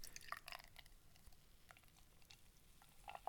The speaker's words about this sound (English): Ooh, that's a nice pour. And I poured a little bit on my lap.